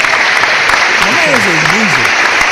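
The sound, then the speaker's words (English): A steady burst of applause for Scott Perry, many hands clapping densely and loudly throughout, with a few rising and falling whoops or whistles cutting through in the middle. “Can we clap up Scott Perry, dog?”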